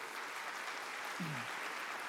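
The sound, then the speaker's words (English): An audience at Gateway church applauds steadily to welcome people who started attending in the last year, a dense, even wash of clapping that holds at a constant level throughout, with a brief low vocal sound briefly rising through it near the middle. “Okay, hey, why don't we give these guys a huge round of applause?”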